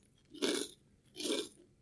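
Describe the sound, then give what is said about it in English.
Two loud crunches about a second apart, the crackly bite-and-chew of a crisp puff cracker, with no talking. “Very crunchy. Very crunchy.”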